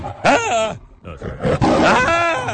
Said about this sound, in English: This was the day in 1928. Leo the Lion roared for the first time at the beginning of MGM's first talking picture, White Shadows in the South Seas.